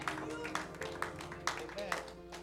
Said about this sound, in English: Amen. Clap for the Lord Jesus.